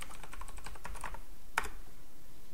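Rapid clattering keystrokes on a new computer keyboard, typed loudly to demonstrate it: a dense burst of clicks for about a second, then a sharp louder clack and a quieter pause. Fairly loud, with no voices.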